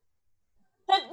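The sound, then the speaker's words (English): A sudden, loud sneeze bursts out after a moment of silence, a single sharp voiced blast with a rising, wavering tone at the end. “bless you. Bless you.”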